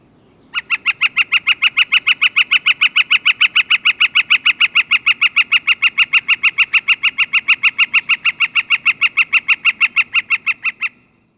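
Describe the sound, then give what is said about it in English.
A Northern Flicker's long, steady rattling call: a fast, even series of loud, ringing notes repeated for about ten seconds, clear over faint low background noise. “One more time, here is the rattling call of the Northern Flicker.”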